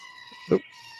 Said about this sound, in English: That thing creeps me out. Damn Thor goats.